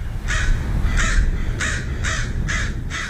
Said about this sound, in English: It's Thursday morning and the village is quiet. So quiet, you can hear the signature calls of crows nesting in the derelict buildings of the town.